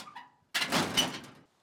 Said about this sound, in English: Some of the sound effects we got from the truck would include the tailgate.